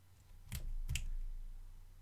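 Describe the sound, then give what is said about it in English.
Two sharp keyboard clicks from a player typing an answer in a quiz round land about half a second apart over a steady low hum, with no voices. “is already furiously typing.”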